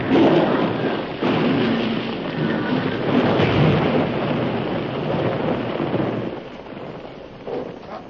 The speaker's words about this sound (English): Not that way. You're running right in the path of the explosion.